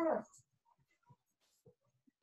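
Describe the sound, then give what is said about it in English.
A dog lets out one brief, high whimper, then only faint scattered shuffling and small noises follow in mostly quiet surroundings. “This is why you don't have dogs when you're trying to do a show.”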